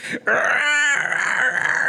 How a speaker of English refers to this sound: And all of a sudden... Here comes the screech. What was that? The Kezu screech.